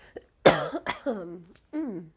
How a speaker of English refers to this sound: I got a cough. Pardon me.